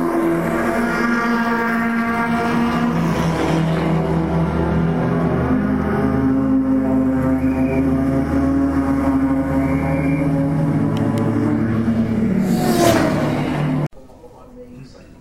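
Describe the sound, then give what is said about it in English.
A Lamborghini Gallardo safety car, the first safety car of the event, drones loudly and steadily as it drives out onto a race track, its pitch rising and falling with the throttle before cutting off abruptly near the end. “First safety car of the event, JP, has just gone out onto the track”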